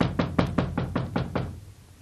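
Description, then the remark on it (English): Rapid series of about eight firm knocks on a wooden door by a drunken American demanding to be let in, evenly spaced, fading slightly toward the end with no voices. “What do I have to do? Break this door in?”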